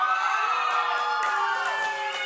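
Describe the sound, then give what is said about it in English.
A large church audience on Super Bowl Sunday cheers and shouts together in a sustained, loud roar of many overlapping voices, with a few higher-pitched yells rising above the din. “I don't know if you're cheering because of the Super Bowl or because you're at church.”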